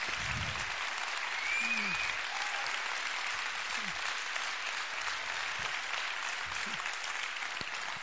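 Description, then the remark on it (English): Sustained audience applause at the end of a presentation, a dense steady wash of clapping that stays loud and even for the whole stretch, with no voices standing out above it. “But if we applaud longer, there's less time for questions.”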